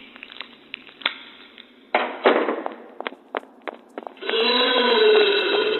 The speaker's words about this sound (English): As Brian's body moves its way further into Bobo's digestive system, his screams become indistinguishable from the crunching cacophony of Bobo chewing Brian's bones.